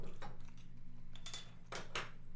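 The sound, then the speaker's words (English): Cans of 5.2% beer being cracked open: several sharp metallic clicks and hissing bursts, the two loudest coming close together near the end, over a steady low hum with no talking. “Let's crack these open.”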